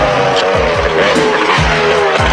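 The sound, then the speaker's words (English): A motor scooter engine roars loudly as it speeds down a highway, its steady whine rising and falling in quick repeated surges with a rough rushing noise underneath. “T-Bob transforms and they go speeding down the highway to tell Matt.”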